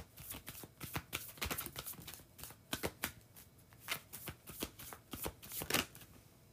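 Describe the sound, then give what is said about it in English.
A Star Code Astro deck of cards being shuffled to draw a card, a rapid run of crisp, papery riffles and flicks in uneven bursts, fairly soft overall with no voices. “Let's get one from that Star Code Astro deck.”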